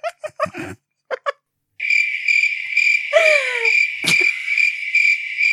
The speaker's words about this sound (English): That's like, you've been looking for that sound all day. I kept hearing that. I'm like, why are there crickets in the house?